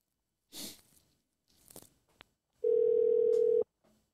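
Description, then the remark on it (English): A single steady telephone tone sounds loudly for about a second as a call goes out to check in with a guest. Before it come a few brief rustling, handling noises and a sharp click. “I'm going to get CJ on the phone and we're going to see how he's doing.”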